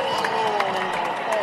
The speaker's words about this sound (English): And not much crowd response. Not much cheers.